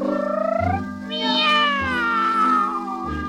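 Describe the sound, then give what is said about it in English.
Two cats trade long, drawn-out meows, the second rising over the first in a yowling duet, loud, with a low steady hum beneath. “But he swears it sounded like two cats, yeah, singing a duet.”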